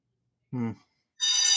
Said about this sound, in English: That's a fire bell. That's the wake-up call.